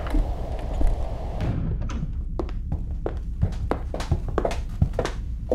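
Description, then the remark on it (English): A door is worked open with a series of sharp clicks and dull thunks over a low background rumble, followed by shuffling, knocking sounds like men stepping in. “The door, no! Do not open it! Come on in, boys.”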